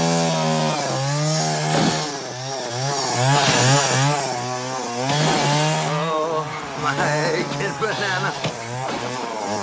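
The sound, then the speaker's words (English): A chainsaw roars loudly, its engine pitch rising and dipping repeatedly as it bites into a wooden log from a big tree out front, running continuously for the full stretch. “He goes to town on this log, just attacking it with like all of this anger.”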